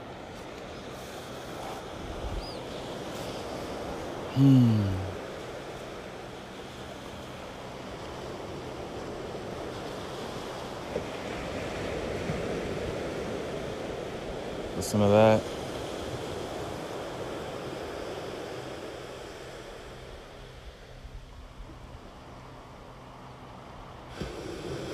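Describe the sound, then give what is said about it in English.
Ocean waves break on the shore at Montecito at 9:08 a.m. in a steady, rushing roar that swells and fades across the whole stretch, with brief rising chirps and a short spoken remark near the start. “Just got to the ocean here in Montecito, one of the more gorgeous shores that I can really think of.”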